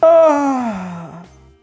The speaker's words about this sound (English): I've had some very rude students in my class. Oh, have you? Yes. Yawning very loudly.